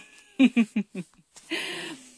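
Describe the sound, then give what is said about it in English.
Four short, voiced meows from a kitten in quick succession, fairly loud, followed by a longer, breathier drawn-out cry; no talking is heard. “Kitten, anything else from you? That's good?”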